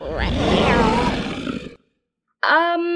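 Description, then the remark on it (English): Several lions roar together in a loud, rough, rumbling chorus that cuts off abruptly, followed after a brief silence by a shorter, more tonal roaring cry. “Oh, and we're part of a lion choir.”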